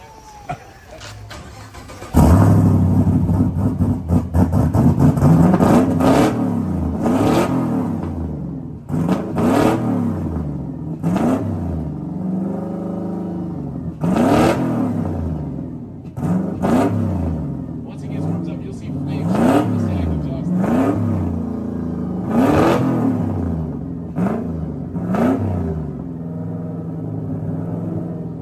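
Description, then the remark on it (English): A 700-horsepower all-wheel-drive car engine, from a car used in a movie, cranks to life, then roars through a long series of loud revs, each pitch climbing and falling back to a rumbling idle between blips. “So we're going to start this car first to kind of show you what a monster sounds like, and then we're going to go to something even more ridiculous.”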